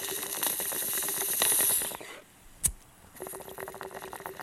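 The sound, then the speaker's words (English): A bottle of water opens with a steady hissing fizz, falls briefly quiet, gives one sharp crack, then the bubbling hiss returns and continues. No one speaks. “There's the water right there bubbling.”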